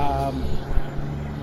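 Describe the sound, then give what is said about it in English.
A series of three or four big trucks pass at a trucker area, a loud, steady low engine drone with a throaty hum that holds evenly through the short stretch. “A series of big trucks, actually, like 3 or 4 in a row.”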